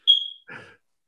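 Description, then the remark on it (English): A single short, high-pitched low-battery chirp from a dying wall-mounted smoke detector rings out clearly and fades quickly, followed by a brief muffled rustle or murmur, then silence. “And just as, you know, we can't be any more professional, my smoke detector decides to start dying behind me. So a little beep in the background.”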